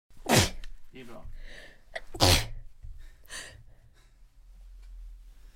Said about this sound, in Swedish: Om ni undrar vad det var som lät, så var det tre stycken nysningar, tror jag. Jag tror jag nyste ut all sån här rök från scenen.